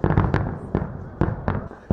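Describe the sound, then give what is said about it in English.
Fireworks explode in the sky, banging and crackling in a rapid, irregular volley, with several sharp, loud bursts over a continuous rumbling wash of smaller pops and no voices. “As the regular fireworks ended, everyone took their places”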